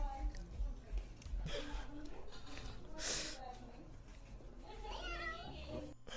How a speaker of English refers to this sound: He just did a little meow at the end. A little cute thing.